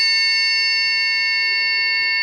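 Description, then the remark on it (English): A struck thin triangle, found in a box downstairs, rings out with a bright, shimmering metallic tone that sustains steadily at full strength for the whole couple of seconds, with no voices over it. “I found this one in the box it's very downstairs. Thin as well. So this is our normal one.”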